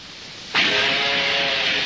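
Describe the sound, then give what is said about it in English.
An early steam locomotive bursts in suddenly with a loud, sustained rush of steam and a steady whistle-like tone. It stays strong and even to the end, with no voices. “You're listening to an early steam locomotive.”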